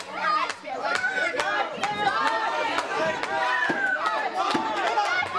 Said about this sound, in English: This crowd letting Ike Van Dyke hear it, that they're firmly behind him.